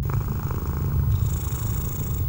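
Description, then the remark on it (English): A steady, rumbling purr from an ocelot, continuous, with a dense low-frequency pulse throughout and a faint hiss in the background; no one speaks. “No, this kitty is a trooper.”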